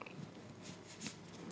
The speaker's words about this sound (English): All right, I'm shuffling the deck. Shuffling still. Shuffle.